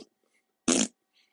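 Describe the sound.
A single loud, buzzy raspberry made with the mouth, imitating a fart, lasting about a quarter second, with near silence around it.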